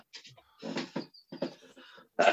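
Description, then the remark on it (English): A loud sneeze bursts out near the end, preceded by a few breathy, noisy intakes and snuffles, with no talking. “bless you.”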